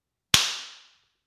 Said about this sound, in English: I'm gonna do Phil Roy's little trick where he does a little clap. Yeah. So you can line it up on the video with the audio.